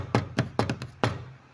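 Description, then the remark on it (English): A quick series of sharp knocks, five or six raps in an uneven rhythm with a short double tap in the middle, moderately loud with no one talking. “Really, what's happening? You keep knocking.”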